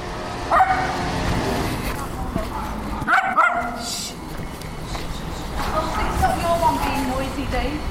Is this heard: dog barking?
yes